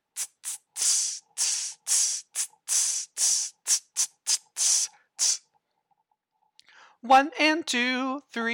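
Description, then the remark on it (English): A voice hisses out the rhythm of measure 28 of a piece as about a dozen short and longer sizzling bursts, steady, then falls silent before someone starts speaking. “Or sizzling.”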